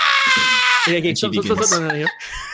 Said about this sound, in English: Screaming hyper loud. I'll literally put his hand over her mouth. It's genuinely tough as you go to like cover her mouth because there's huge amounts of air blowing out.